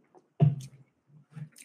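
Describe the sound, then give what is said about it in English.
A quiet sip of a drink, with a soft wet slurp followed by a couple of faint swallowing gulps and a light breathy exhale. No one speaks. “Am I actually drinking or is this water?”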